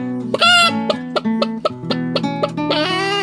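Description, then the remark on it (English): A chicken clucks in a quick, uneven series of short, bright calls over a steady low hum, fairly loud, ending in a longer drawn-out squawk. No one speaks. “Is it going to be the chicken, is it”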